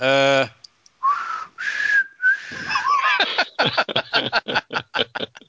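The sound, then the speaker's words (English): Three breathy, airy whistles, given as a joke tagline for the Wes Anderson film Isle of Dogs, follow a brief voiced tone. Each is a short, steady note, and they give way to a quick run of rhythmic, pulsing snickers. “I just wrote it out as three whistle.”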